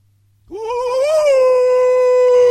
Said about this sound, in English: But anytime you hear a dog, whoo, whoo, whoo, it's me. He's raising not just an alarm, a defensive mechanism.